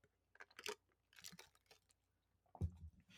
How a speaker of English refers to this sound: Sorry, I needed a sip.